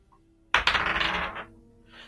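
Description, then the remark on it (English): Dice tumble and clatter across a hard tabletop during an attack roll in a tabletop role-playing game, one bright burst of rattling clicks lasting under a second before settling, one die landing cocked, with no voices. “That's cocked. Stop hitting other dice.”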